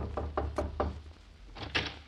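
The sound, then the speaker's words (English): A door is knocked on four times in a quick, even rhythm, followed by a brief pause and two more louder raps, distinct with no voices. “See who's at the door, James.”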